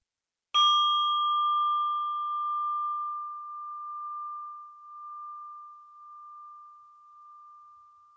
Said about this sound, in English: And I'm inviting the bell to end this practice.